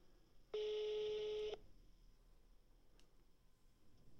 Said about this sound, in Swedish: Vänta, nu har vi en liten telefonare på gång här. Ska se. Om vi får någon kontakt.